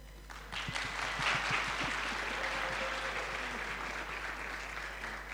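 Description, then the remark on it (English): An audience at a sermon breaks into steady applause as someone comes in, a dense wash of overlapping claps that swells quickly and holds at a moderate level for several seconds, with no voices standing out. “Everyone clap.”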